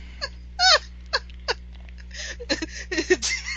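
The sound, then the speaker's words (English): A sharp, loud sneeze bursts out among a scatter of short breathy vocal noises and clicks, over a steady low hum. “So bless you.”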